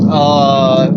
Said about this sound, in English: That was an exhaust rumbles are so...